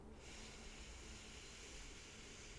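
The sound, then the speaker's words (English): A slow, steady inhale through the nose during a breathing exercise, breathing in for a count of four, a soft, airy rush of breath that stays even and continues for a few seconds, quiet with no talking. “And we're going to take our first breath now. So remember, breathing in for the count of four.”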